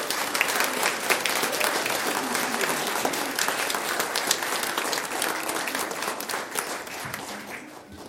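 A full round of applause from a crowd, dense steady clapping that holds for several seconds and then begins to thin and fade toward the end.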